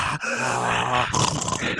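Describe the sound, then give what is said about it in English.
A voice imitates Darth Vader's heavy, rasping mask breathing: a drawn-out groaning inhale followed by a breathy, noisy exhale, fairly loud with no other sounds around it. “Fucking Darth Vader in the goddamn house.”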